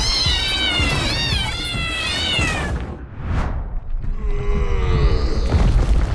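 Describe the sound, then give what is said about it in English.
Loud, warbling robotic meows from robot cats raining down overlap in a wavering chorus for a couple of seconds, then a quick whoosh sweeps past and a low rumbling clatter takes over. “It's raining robot cats! Take cover!”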